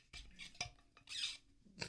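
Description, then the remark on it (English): A water bottle squeaks several times in short, high-pitched bursts with uneven gaps, a bright scraping squeal standing alone without any voices. “It's a squeaky. I'm going to do it again.”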